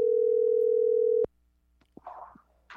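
A telephone dial tone, heard while hanging up and calling right back over a bad connection, hums at one steady, mid-low pitch for just over a second, then cuts off abruptly with a click, followed by faint scattered noises.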